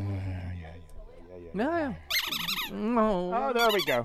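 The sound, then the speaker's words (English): A dog squeezing a squeaky toy repeatedly, giving a series of loud, wavering high-pitched squeals in quick succession after a brief low rumble at the start. “That means that little Mahler squeak toy”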